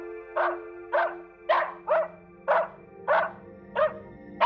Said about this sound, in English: Shush, Nikki! That's our new protector, Gerard. Don't bark at him! Good boy.